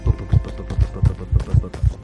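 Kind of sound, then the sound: sound effect, fast heartbeat sound effect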